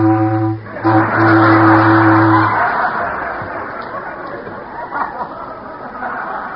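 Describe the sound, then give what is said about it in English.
A referee's whistle signals the kickoff of a football game in two blasts, a short one and then a longer sustained one, low and buzzy, over a steady murmur of crowd chatter that continues after it stops. “Flatfoot's lining up to receive. And there's the whistle.”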